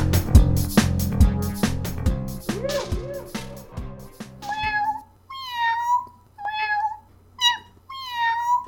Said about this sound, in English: Meow. Meow.